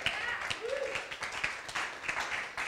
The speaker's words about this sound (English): Come on, you can clap.